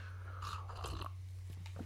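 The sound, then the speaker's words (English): Someone takes a quiet sip of coffee, with a short slurp and a soft swallow over a steady low hum, then a few faint mouth clicks. No one speaks. “Now, sorry, need another sip.”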